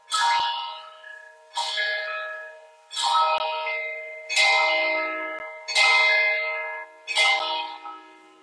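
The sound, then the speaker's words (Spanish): A large bell tolls six times at five in the afternoon at a slow, steady pace, each strike ringing out with a bright metallic attack and a long shimmering decay, heard clearly with no voices. “A los que las campanas terminan de sonar, que vea que ya son las 5 de la tarde, ¿verdad?”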